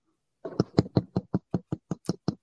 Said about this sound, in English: Did someone knock at your door?